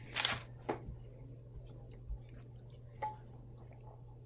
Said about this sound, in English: If you hear any rustling, it's the dogs.